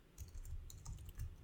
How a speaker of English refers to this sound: Yep. I just started typing into my actual recording as opposed to the right thing.